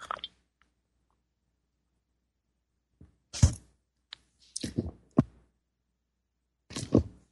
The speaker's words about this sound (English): Time for me to take a sip of my tea here.